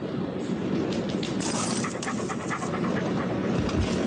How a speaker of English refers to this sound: Oh, the dog.